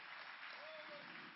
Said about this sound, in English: Come on, would you clap your hands and give a shout unto God today for the work of the preacher.